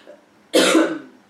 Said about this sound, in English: I have coffee in here, so it's not something that's gonna help me get my cough better. But I was sick for a while, and then now I just have the coughs. Even it's dry.